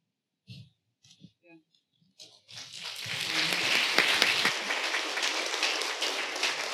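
A few brief spoken sounds, then an audience bursts into sustained applause after a shared personal testimony, dense and steady clapping that swells quickly and holds at a strong level to the end.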